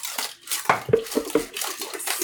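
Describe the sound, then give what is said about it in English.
Water from a final water stop bath sloshes and splashes as it is poured out of a tray, a steady hiss broken by three or four sharp clinks and clatters of the tray itself, with no voices. “Okay, I'm dumping out my last water stop.”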